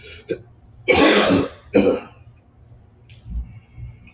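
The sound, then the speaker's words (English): A short throat-clearing noise, then two loud, harsh coughs in quick succession from someone trying to cough out something in their system, fading into a faint rough exhale and low rumble afterward. “I can't cough out whatever it is that's in my system, because every single time I breathe in, whatever I coughed out breathes in, goes back into my body.”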